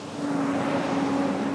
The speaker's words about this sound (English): On an industrial street in the city of Riverside, delivery trucks rumble past a small wooden building.